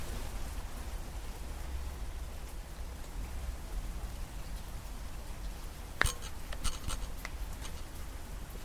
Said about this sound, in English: Listen to the rain. Listen to the rain. You hear it? It's raining.